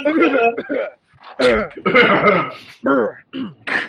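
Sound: voice imitating a cough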